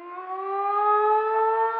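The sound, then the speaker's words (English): A person imitates a siren with a steady, slowly rising vocal wail, held continuously for about two seconds. It is loud, with no other sounds around it. “And is that a real siren or is that you? That's me. Your amazing siren impersonation.”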